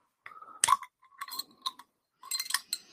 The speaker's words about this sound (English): Yeah, as soon as the bottle's open, there's that grapefruit.